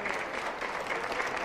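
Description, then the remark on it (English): A crowd claps steadily, a dense, continuous wash of many hands at an even, fairly loud level for the full moment, without individual claps standing out. “I want a whole lot of clapping on that one.”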